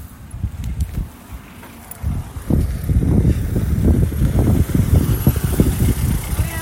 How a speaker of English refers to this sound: This road is crazy. And there's a car coming in.